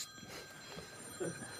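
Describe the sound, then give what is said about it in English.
A phone rings with a steady, high-pitched electronic tone that sustains through the whole moment, layered over a low murmur of background noise and a brief bump of sound, during a press conference; the caller is the speaker's daughter. “Answer it.”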